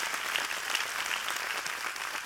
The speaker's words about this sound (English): There you go, amen. Give God another big hand clap. Come on, amen.